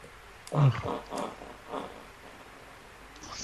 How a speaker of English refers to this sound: Yeah, I farted at you. Oh, gross, dude.